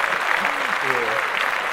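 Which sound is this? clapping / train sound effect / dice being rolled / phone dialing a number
clapping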